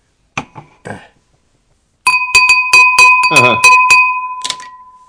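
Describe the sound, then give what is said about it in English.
A steady, pure ringing tone from a finger rubbed around a wine glass rim sustains for about three seconds, with a faint overtone, over choppy talk and clicks, after a brief voice. “One of these times, I'm going to figure out how to do that that rim of the glass rubbing thing.”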